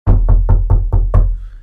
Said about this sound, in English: And if you see some flaking paint, go up. That's all you gotta do. Knock on the door.